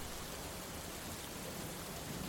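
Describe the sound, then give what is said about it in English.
A steady, even hiss of heavy thunderstorm rain pours down without pause, a dense wash of sound with no voices and no distinct thunderclaps. “A thunderstorm.”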